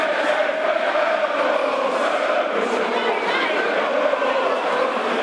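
A large football stadium crowd at a Lions match against Wigan roars and chatters continuously, a dense wall of many voices at a steady, loud level throughout, with no single speaker standing out.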